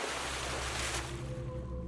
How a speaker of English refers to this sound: turned away for just a second when she heard a splash.